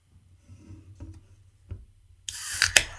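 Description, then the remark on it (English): A few soft clicks and handling knocks over a low rumble, then a loud, harsh fizzing rush of nitro IPA beer pouring from a 15-ounce can into a Sam Adams IPA glass, with sharper gurgling bursts near the end. “Note to self, keep it away from a microphone when you're pouring this.”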